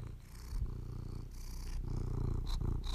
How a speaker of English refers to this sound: Is there anything better than a cat purring?